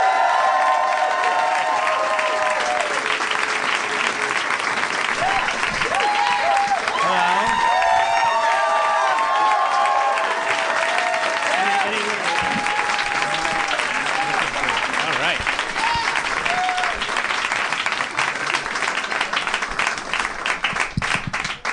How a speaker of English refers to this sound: There was some extended applause there.